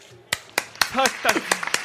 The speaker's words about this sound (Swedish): Tack. Tack. Ja, fan applåder måste jag säga.